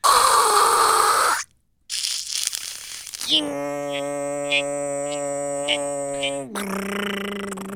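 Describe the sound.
A voice mimics an early CompuServe- or Prodigy-type dial-up modem handshake: a hissing static burst, a brief pause, rough crackling, then a sustained buzzing electronic drone with chirps popping on top, ending in another hiss.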